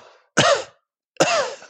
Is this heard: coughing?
yes